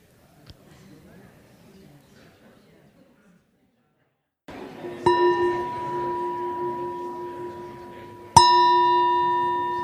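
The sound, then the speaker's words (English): A meditation bell is struck twice a few seconds apart, each strike ringing out clearly and lingering in a long, shimmering tone over a soft murmur. “Okay, I'll ring the bell to tell you to come back.”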